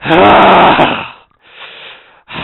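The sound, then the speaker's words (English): Heavy, ragged breathing of a person out of breath after trying for five minutes to pull a clogged bong: a loud, rough exhale with a raspy, snore-like rattle, then a softer breath after a brief pause, and another starting at the end. “That's me breathing because of how out of breath I am.”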